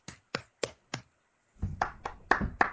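One person claps for themselves alone, four crisp claps in an even rhythm, then a few more claps over a low rumbling, shuffling noise.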